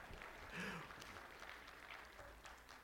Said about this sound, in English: Oh, now Simon Says you can leave. Let's give these guys a golf clap.